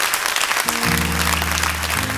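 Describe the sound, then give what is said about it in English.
An audience claps steadily in a dense, continuous wash of applause, while sustained low keyboard chords swell in partway through and hold underneath. “Come on, clap your hands.”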